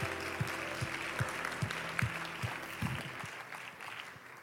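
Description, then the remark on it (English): A church audience gives a hand clap of praise to the Lord as they are seated, clapping in a dense, steady burst over a rhythmic low thumping beat and held musical tones, the applause thinning out over the last second. “You may be seated, but as you're seated, would you give the Lord another hand clap of praise right now?”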